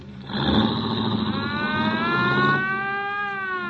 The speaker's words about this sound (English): Turn off that siren, huh?